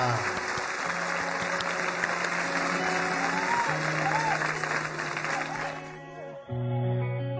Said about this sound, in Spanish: Estamos haciendo un Facebook Live para que recibamos con un fuerte aplauso